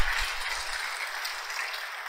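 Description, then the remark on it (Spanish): A church audience claps for God during a sermon, a dense wash of many hands applauding at moderate volume, continuous throughout with no voices standing out. “Vamos a darle un aplauso fuerte a nuestro Dios.”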